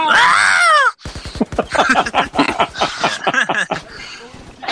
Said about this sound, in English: He does the Star Wars stormtrooper scream as he falls off. The Wilhelm scream?